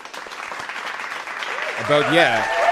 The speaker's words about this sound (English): But Instagram music is apparently available for Canadians to listen to, finally. Let's get a fucking round of applause for that shit.